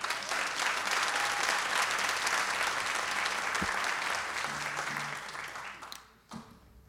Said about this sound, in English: Thank you very much. And spontaneous clapping, which is great.